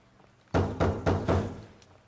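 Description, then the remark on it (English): Four firm, evenly spaced, loud knocks on a wooden door, with a slight resonant thud to each. No voices, just quiet room tone before and after. “You are going to answer the door.”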